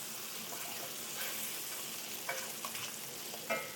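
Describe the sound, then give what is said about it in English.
Bacon sizzles steadily in a dry skillet as it renders, a dense, bright crackle running throughout, broken by a few sharp scraping clatters as tongs stir and turn the strips. No one speaks. “I'm using a tongs, but I just want to kind of get this kind of rendering. I'll get a little stir now.”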